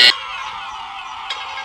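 A quiz game buzzer sounds as a player buzzes in first, with a sharp, loud burst, then holds a steady, harsh, nasal buzz for over a second, with a brief blip near the end and no talking.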